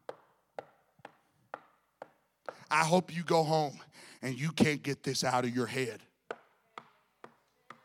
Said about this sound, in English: The knocking of the wood, because a man was saying, I don't need the partying, I don't need the drinking, I don't need the giving into marriage, but I got to prepare myself.